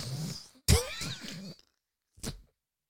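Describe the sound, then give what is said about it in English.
A harsh coughing fit with several raspy bursts running together, then a pause and one shorter cough at the end. “I'm coughing on it.”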